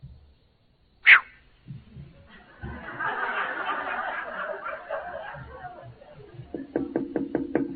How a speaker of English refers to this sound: At about 6:30, the door knocked and the police were there.